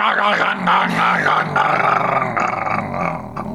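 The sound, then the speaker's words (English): A person vocally imitates the noise an F1 car's engine made as it ran out of power, producing a loud, continuous rasping roar with shifting pitch and a sputtering, growling texture for a few seconds. “Did you hear did you hear that noise that his engine made? Can you imitate that noise for us?”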